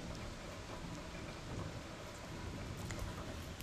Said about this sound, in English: I enjoy listening to a storm like this. It's steady and peaceful rain. It's quieting. Even in the noise, it's quieting.